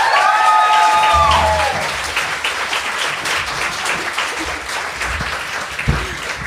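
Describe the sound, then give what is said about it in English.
An audience applauds steadily to welcome guest Jessie Cave, a dense patter of many hands clapping throughout, with a high whoop or cheer rising over it at the start before the clapping carries on alone. “Please give a big, warm round of applause for Jessie Cave!”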